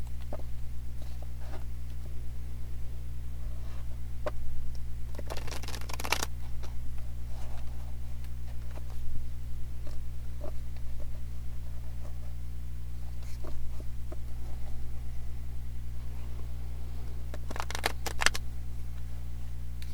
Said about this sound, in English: Okay, that shuffle was a bit of a mess, and a bunch of cards came out.